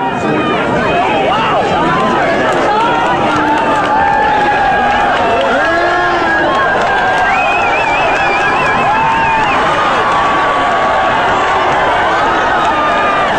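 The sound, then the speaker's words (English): A loud, excited crowd at a track meet roars and cheers without pause as a dog joins a race of several runners with one girl in the lead, with shouts, whoops and rising screams layered over dense babble and scattered clapping. “Several runners on the track, one girl in the lead. The dog decides they're going to change that. And this is what it sounds like.”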